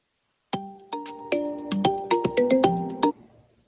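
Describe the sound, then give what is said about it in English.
A phone ringtone for an incoming call plays a bright, chiming electronic melody of quick successive notes for about two and a half seconds, loud, then cuts off abruptly with no voices. “Phone call coming in.”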